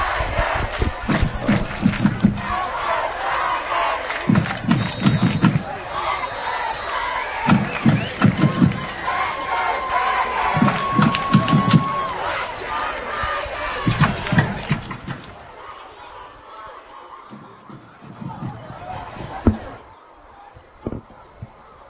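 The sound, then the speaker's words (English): A large outdoor crowd at a Friday night football game at Legion Stadium roars and cheers continuously, with rhythmic bursts of drumming or chanting pulsing through, then the noise thins and fades to a quieter murmur near the end. “Get you a little crowd, get you into what's going on here at Legion Stadium, man.”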